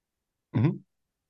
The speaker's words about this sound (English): Awkward pause for coughing.